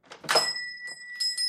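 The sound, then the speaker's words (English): The front door of a shop full of snow globes opens with a muffled thunk, and a small bell above it rings out clearly, its bright tone lingering and chiming again briefly. No one speaks. “Now, let's use our imagination and walk in through the front door.”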